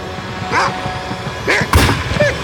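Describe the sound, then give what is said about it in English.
Several loud, throaty barks from advancing hounds, spaced irregularly over a couple of seconds, with a sharp booming thud breaking in among them and a low rumble underneath. “The hounds are advancing.”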